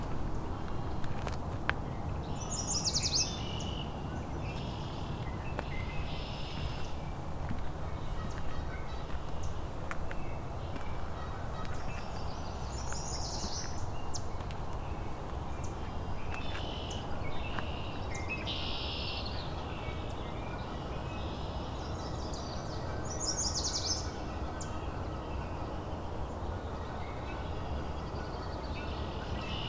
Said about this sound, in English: Lots of red-winged blackbirds.